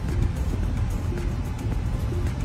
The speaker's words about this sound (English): We're going to take off on the first ride on the new 2022 Tesla Model Y Performance. Man, this thing is smooth. Don't even have to hit the brakes. Just keeps going. Flows.